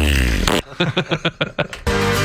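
A Tesla car's novelty fart sound effect: a loud, noisy blast, then a quick sputtering run of about seven flappy pulses, and another broad, loud burst to finish. No one speaks.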